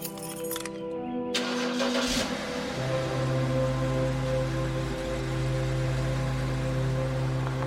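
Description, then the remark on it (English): A truck engine cranks and catches after a second or so, then settles into a steady, loud, rumbling idle with no one speaking, before the truck is pulled up to fuel pumps. “Mark pulled the truck up to the pumps, and we filled it up.”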